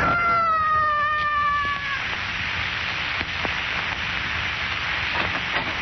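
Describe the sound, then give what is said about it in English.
A man's high, sustained scream wails for about two seconds and fades away as he loses his balance and falls 26 stories, leaving a steady hiss with a few faint clicks and knocks. “I heard a scream.”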